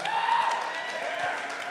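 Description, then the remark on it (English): A live audience in a theater cheers and whoops in a dense, steady roar lasting a couple of seconds, with a few raised voices standing out above the din. “Don't cheer that.”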